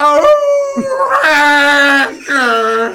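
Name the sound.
wolf howling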